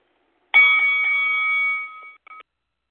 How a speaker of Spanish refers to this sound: Ya tú sabes, el sonido de la campana.